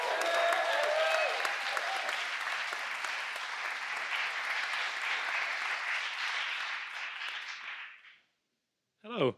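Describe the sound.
Sustained audience applause for Joe Dunthorne, a dense crackle of many hands clapping, holding steady for about eight seconds before fading to silence; a brief voice starts up right at the end.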